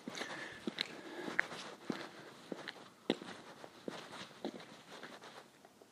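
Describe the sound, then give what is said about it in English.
Footsteps walking outdoors at a steady, unhurried pace past a children's soccer goalpost with a net, each step a soft, dull scuff repeating about twice a second over a quiet hiss, with a few faint high chirps in the background. “I'm walking past a goalpost, children's goalpost, soccer goalpost.”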